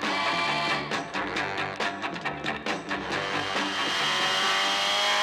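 The Batmobile roars off at speed in pursuit, its engine loud while tires let out a sustained high-pitched squeal that runs through the whole stretch, with no voices.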